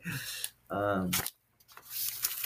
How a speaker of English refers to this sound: I'm gonna use some paper, for example, right? Let me put this over here so I can smoke that.